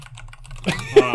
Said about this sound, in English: Oh no, it's typing away.